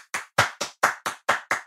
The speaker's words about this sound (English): Claps for self.